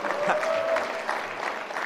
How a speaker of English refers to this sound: Let's give her a round of applause for the yelling, yeah.